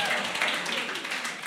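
A steady patter of audience clapping, a dense wash of hand claps that holds at an even level for the whole moment without a clear break or a single standout clap.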